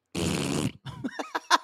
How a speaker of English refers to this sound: It's such a weird, like, wet fart.